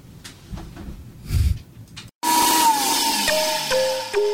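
After a few soft bumps and a brief silence, a blender's loud motor kicks in and runs steadily with a high, whining hum that slowly drops in pitch.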